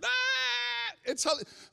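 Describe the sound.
A person's voice imitates the bleat of a singing goat, holding one long, steady, nasal tone for nearly a second, followed by a few short, choppy vocal sounds.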